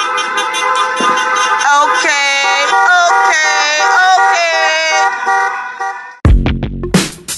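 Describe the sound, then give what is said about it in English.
A long line of cars honking their horns in protest outside a halfway house at the DC jail, many horns blaring together in long, overlapping blasts with shouting voices mixed in, before the sound cuts off abruptly. “posted a video showing her participation in a long line of cars outside the halfway house.”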